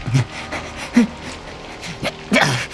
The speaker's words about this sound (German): Weg! Weg mit dir! Verdammter Köter!